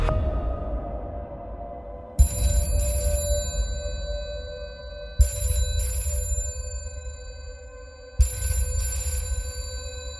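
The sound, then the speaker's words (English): A telephone rings at a young detective's home early in the morning, before sunrise, on April 23, 1973, with three sharp, evenly spaced bursts about three seconds apart, each a bright metallic trill that decays over a low, steady hum. No one speaks. “At his home, a young detective, Mickey Alufi, is about to be awoken by a phone call that will stay with him forever.”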